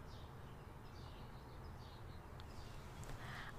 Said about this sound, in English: Just because, like, okay, do you hear these birds? Hold on.